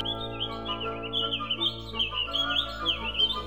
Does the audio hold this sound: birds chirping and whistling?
yes